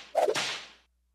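A single sharp whip-crack sound effect, with a quick whooshing swish leading into a bright snapping burst that fades out within a second. Loud and isolated, with no voices.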